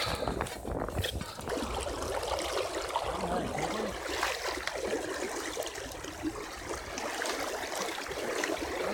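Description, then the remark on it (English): Steady rushing and burbling of flowing river water in the woods, continuous for the whole stretch, with no voices over it. “Following the arrows through the woods to get to the river.”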